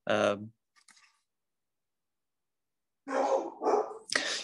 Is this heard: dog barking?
yes